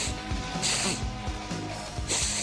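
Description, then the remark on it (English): Two sharp, breathy sniffs, one early and one at the end, each a short hissing intake of air over a low, steady background hum. “It sounds like you're sniffing.”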